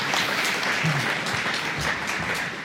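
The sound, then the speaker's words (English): Steady audience applause for a man who came and brought his rod, a dense crackle of many hands clapping at a constant loudness for a few seconds with no one speaking over it. “Let's give him a hand.”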